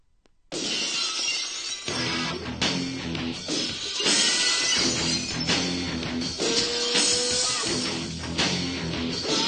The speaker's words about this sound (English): You hear that glass break. There's only one guy. You know you're getting your ass kicked.